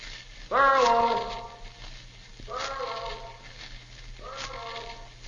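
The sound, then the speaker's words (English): A loud, drawn-out shout of a name rings out in Echo Valley, then echoes back twice off the cliffs around a waterfall, each repeat fainter and smeared, with a low steady hum underneath. “The cliffs around the waterfall down the trail make a perfect sounding board.”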